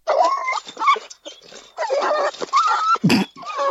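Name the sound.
dog barking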